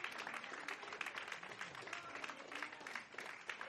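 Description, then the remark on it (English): A church audience, standing, claps together as a clap offering to the Lord, a steady, dense wash of applause, many hands overlapping into a continuous bright patter with no voices standing out. “Stand with me and give the Lord a good clap offering.”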